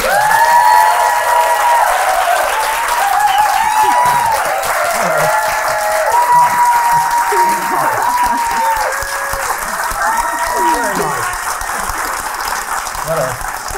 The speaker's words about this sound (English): Well, she's not here, so if you clap that hard for her, please welcome Hugh Grant.